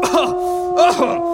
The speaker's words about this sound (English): She lived with a really gross cough, which... Oh, shit, I mentioned the cough!